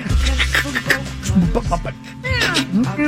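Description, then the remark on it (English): Several swooping, nasal meows of the singer's cat rise and fall over a steady musical backing with low bass tones in an album track. The calls come in quick succession, loud, and grow more prominent near the end. “That was her cat meowing.”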